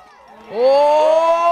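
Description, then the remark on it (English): A crowd at the Junior Freeride Regional Competition, a ski event in Crested Butte, erupts in loud cheering and whooping at a local athlete's second run with the biggest air of the competition, rising sharply after a quieter start and holding at full volume, with many voices shouting together. “That's the crowd at last weekend's event reacting to local athlete John Clay Patterson's second run, which included the biggest air of the competition.”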